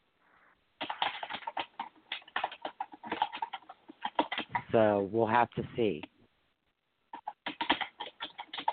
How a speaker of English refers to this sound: You typing? Huh. Yeah, I'm typing some stuff. I've got like 20 different things going on. I apologize.